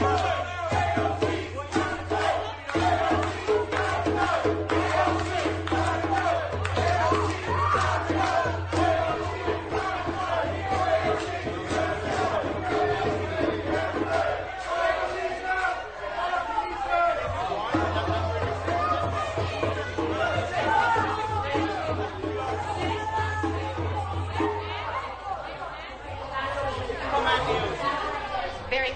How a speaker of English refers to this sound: Screaming at her, banging the drums.